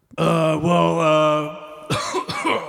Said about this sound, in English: Oh, sorry, lung stuff. Is that I just did a punk story about how I just did that cough.